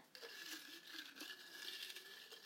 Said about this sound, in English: Which sounds so complicated, but actually it's just a bunch of paper slips with book titles. I just pick one, and that's my next read.